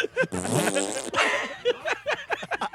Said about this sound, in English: Wait, did that guy fart in our face because he knew it was our like sign off?